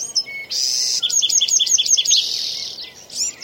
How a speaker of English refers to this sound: This is in the middle of the Sequoia National Forest. And what's that sound, you know? Well, we've got some birds. I think we have a few insects in the background.